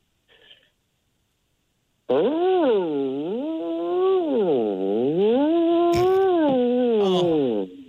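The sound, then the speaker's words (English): A person imitates a whale call with one long, loud, moaning tone whose pitch swoops slowly up and down in waves for about six seconds, preceded by a brief faint noise. “Let's hear your best whale call.”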